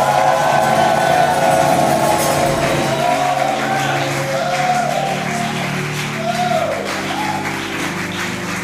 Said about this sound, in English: Your clapping and your shout is your miracle for the night.